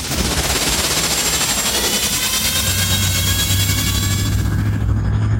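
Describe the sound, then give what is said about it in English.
Luke Skywalker's hovering speeder on Tatooine, worked on all the day before, fires up with a dense, rapid rattling roar and thin high whines, then settles into a steady deep hum that runs loudly to the end. “Sounds smooth, Luke. Yeah, I worked on her all day yesterday.”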